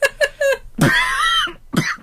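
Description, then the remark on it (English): A painful, scratchy cough: three quick hacking bursts, then a long strained, rasping cough with a whistling, voiced edge, and one more harsh cough at the end. Fairly loud, no talking. “Who coughs like this? It hurts.”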